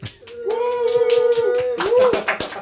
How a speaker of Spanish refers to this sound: Quiero que lo conozcan. Le den un fuerte aplauso que este estudio está lleno.